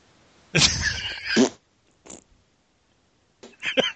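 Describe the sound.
Someone blows wet, buzzy raspberries with the mouth imitating farts: one long sputtering burst, a brief blip, then another short sputter, loud, with quiet gaps between.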